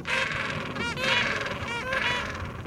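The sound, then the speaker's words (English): Loud, harsh braying calls of gentoo penguins, several overlapping honking cries in a continuous chorus with rising and falling pulses, without any talking. “Gentoo penguins look a little pear-shaped on land, but once they dive into the water, that shape lets them reach speeds of up to 22 miles per hour.”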